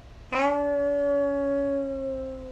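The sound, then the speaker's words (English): A sustained, wolf-like howl from people howling together on a count of three begins abruptly and holds a steady pitch for about two seconds, sliding slightly lower as it fades, fairly loud. “On the count of three, we'll all howl together.”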